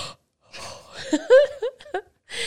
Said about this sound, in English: Are you yawning? No, I'm stretching. You yawned. I'm stretching. With a big.